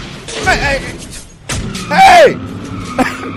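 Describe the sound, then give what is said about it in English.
A new Porsche skids with tires spinning: two loud, high screeches slide downward in pitch, with a burst of rumbling noise and a thump between them. “The brother got him a new Porsche. Listen, he's spinning on tires.”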